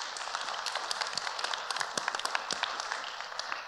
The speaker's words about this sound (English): Why don't we give her a round of applause?